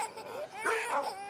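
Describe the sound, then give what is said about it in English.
A baby, woken up by dogs, cries and wails in short, rising bursts, moderately loud, with a sharp upturn at the very end. “That little kid's fucking losing his mind.”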